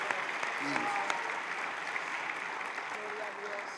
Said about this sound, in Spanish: Aplausos a Cristo. Gloria a Dios.